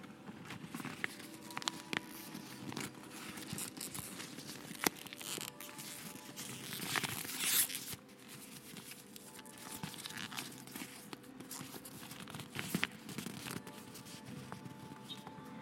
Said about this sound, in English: But just to pledge my dedication to you all, I'm going to also let you hear what the bag sounds like for a little crinkly ASMR moment. Here we go.